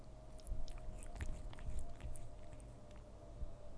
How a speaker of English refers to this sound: Do you want to listen to my cat licking herself?